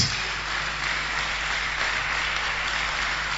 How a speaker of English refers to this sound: Clap for Jesus.